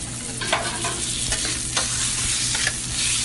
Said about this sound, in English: We are making our popular dish, one of our popular dishes is chicken fajitas, and we put it on our grill top, and it has tomatoes, green peppers, onions. It's the ingredients that we use, the seasoning that we use.